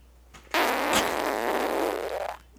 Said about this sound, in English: Actual fart. Sounds like he was really squeezing it, and he sounds like he was sick. Sound like he had something.